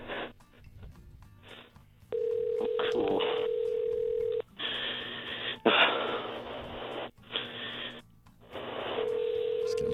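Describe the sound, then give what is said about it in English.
Over a thin, hissy phone line, a call to a cell phone gives a ringback tone in repeated steady bursts with pauses between them, and nobody picks up. Faint background voices and handling noise come through. “Okay, let's see if she answers. Here we go again.”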